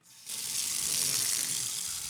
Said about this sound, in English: Now we got to fill this with sweet water. Fill it. This is sweet water. Gross.